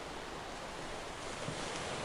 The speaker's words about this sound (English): Picture yourself on a beach. Feel the sun on your skin and the warm sand beneath you. Hear the crashing of the waves.